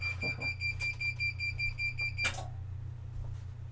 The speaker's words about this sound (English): oh, that sound, oh, that's not your car going off or anything. I forgot I got the press going.